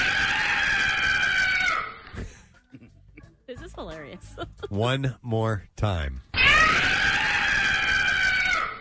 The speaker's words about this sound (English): That's actually from a porn movie, and it's the description is dildo in a sex swing.